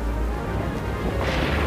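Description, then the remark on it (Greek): A deep, continuous roll of thunder from an approaching strong storm rumbles loudly throughout, heavy in the low end with a slight brightening of noise toward the end. No voices are heard. “Μοιάζει να έρχεται θύελλα. Και δυνατή μάλιστα.”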